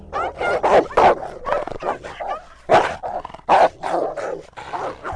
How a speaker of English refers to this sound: An innocent dog being attacked by hungry dogs.